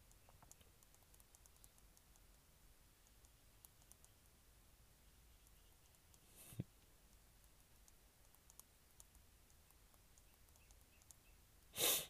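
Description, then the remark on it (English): Faint, soft key clicks patter irregularly on a computer keyboard over a quiet background, with one sharper tap midway and a brief louder rustle at the very end. No one speaks. “Just typing real quick.”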